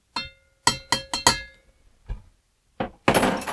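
A drink of muddled sugar, cherries and a splash of water being stirred in a glass: five bright, ringing clinks in a quick, uneven rhythm, then a soft dull knock and a louder burst of rough, rattling noise. No one speaks.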